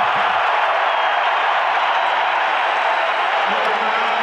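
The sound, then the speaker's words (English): A large basketball crowd cheers and applauds in a steady, dense roar that holds at an even, loud level for the whole stretch, with no single voice standing out, after Donovan drives, double clutches, misses and is fouled. “Crowd loves it.”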